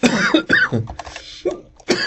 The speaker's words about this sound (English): But at the end of the day, what I'm trying to say, excuse me with the coughing and stuff,